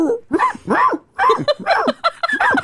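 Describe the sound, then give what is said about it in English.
A person yaps in a quick run of high, clipped barks, imitating a small dog: about six loud bursts with short gaps, the pitch bending up and down on each one. “Oh, you got little dog.”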